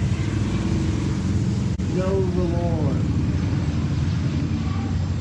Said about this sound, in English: Don't ride a motorcycle by a church on Sunday morning. You're going to do it, stop in.